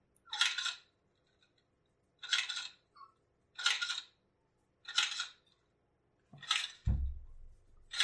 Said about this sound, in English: This is a typewriter. Oh, I love just raw mechanical devices here. Yeah, but there's no keys.